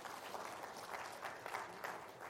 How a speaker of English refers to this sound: Come on and give the Lord a hand clap of praise in this place today.